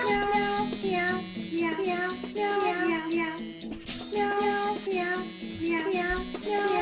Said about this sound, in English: I can name that song in one cat meow.